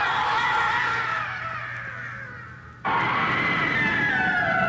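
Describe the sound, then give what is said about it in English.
Screams from an old Disney Halloween sound-effects album: loud, sustained high-pitched screaming wails, several voices overlapping and sliding downward in pitch, briefly cutting out before starting again just as loud, with no talking. “we'll have some sound effects from like the old Disney albums”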